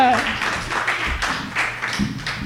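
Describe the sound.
Steady audience applause, a dense wash of many hands clapping at an even loudness for a couple of seconds, with some crowd voices mixed in.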